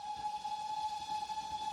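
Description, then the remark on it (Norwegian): A steam train whistle blows in one long, steady, high-pitched tone, loud, with a faint hiss of steam beneath it and no voices, as passengers board a train in Copenhagen. “Og vanskelige hatter som skal inn trange togåpninger og det blåses I fløyta og de inntar sin luksuriøse togkupé”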